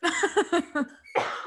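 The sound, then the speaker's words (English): A person with a dry throat gives a quick run of four or five dry, fairly loud coughs, followed by a rougher, breathier cough or throat-clearing at the end. “My throat is so dry. I keep coughing.”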